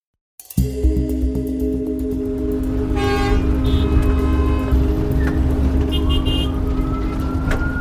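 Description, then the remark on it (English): Busy Manhattan street traffic on a Friday night, heard from a cab, with a steady low engine rumble, punctuated by several car horns honking, including a sustained blare and shorter toots, loud and continuous throughout. “This traffic's gonna kill me.”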